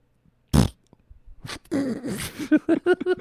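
A single short, loud burp erupts, followed by a stretch of wobbly voiced vocal sounds that may be talking or laughter.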